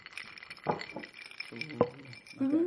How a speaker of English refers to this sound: So you might hear a lot of clinking of ice, especially with my one. I'm moving mine away.